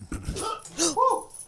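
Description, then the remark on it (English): A dog, Babka, lets out a few short, high whimpering whines in quick succession, fairly clear, with no talking over them. “You just kick your dog?”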